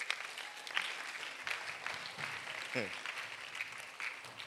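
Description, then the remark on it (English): An audience applauds steadily throughout for the speaker's shepherds, a dense, sustained patter of many hands clapping, with faint voices mixed into the crowd noise. “You don't clap for my shepherds.”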